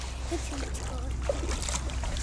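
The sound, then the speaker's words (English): Cold shallow water sloshes and splashes around the feet of someone wading, in a steady, continuous churn, with faint voices mixed into the background. “Ooh, this water's cold.”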